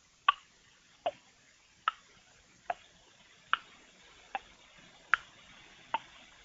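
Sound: clock ticking sound effect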